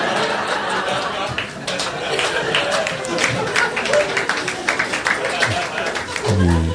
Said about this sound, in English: You were worried about that one, then. Oh, shit, you ended up applauding. I fucking won that one, people.